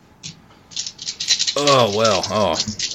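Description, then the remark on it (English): Official dice rattle and clatter in a quick, steady burst for about three seconds during a tabletop role-playing game, rolling no 5s or 6s; halfway through, a voice starts up with a drawn-out, wavering vocal sound over the continuing rattle. “Oh, he had advantage and I rolled no 5s or 6s.”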